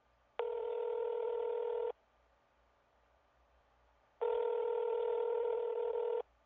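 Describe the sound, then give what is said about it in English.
Two long, steady electronic phone tones, each lasting about a second and a half, separated by a couple of seconds of quiet, with no voices. “Phone call on January 3rd, 8:47 p.m.”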